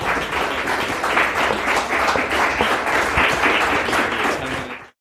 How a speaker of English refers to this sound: We want to give one final applause.